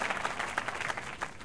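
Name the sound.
applause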